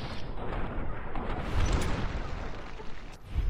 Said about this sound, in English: And I'm going to have to whip out the grenade launcher... Best a couple grenades in this guy because he is too far away.